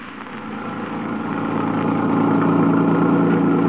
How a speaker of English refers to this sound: A car, an automobile.